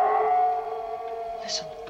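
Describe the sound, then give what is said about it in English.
A long, eerie howl holds a steady, wavering pitch for about two seconds, loud and sustained, fading slightly toward the end with no talking over it. “And then we get our first howling.”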